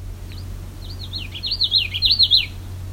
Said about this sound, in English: This was a common Yellowthroat.